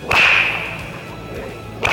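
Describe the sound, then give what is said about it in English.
A sharp, loud bullwhip crack snaps, followed by a ringing, fading tail and a second crack starting at the very end. No voices. “Have you ever heard the crack of a whip? I actually have a bullwhip of my own, and it's definitely loud, almost like a gunshot.”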